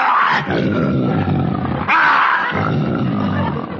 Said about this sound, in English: And now, ladies and gentlemen, I'd like to call your attention to Rex. Rex, the king of the jungle, the most ferocious lion in captivity.